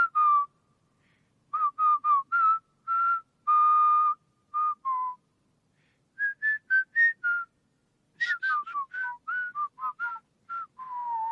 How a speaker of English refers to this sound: I mean, they're all whistling that.